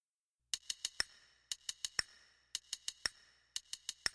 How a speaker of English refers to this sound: Hey, what's that? I don't know. Some clicking noise. It just came out of nowhere. Great. I wonder what that means. It's pretty annoying.